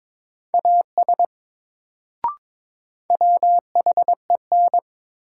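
Morse code at 22 words per minute from a drill of new words from the top 100 words: a steady mid-pitched tone keyed into crisp short and long beeps, two bursts of characters split by a pause and a single soft click, with no voices.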